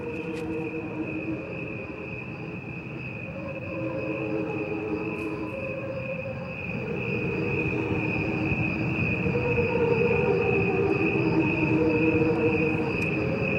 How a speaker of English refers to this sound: And to get to this point, I want to play for you a soundtrack of crickets.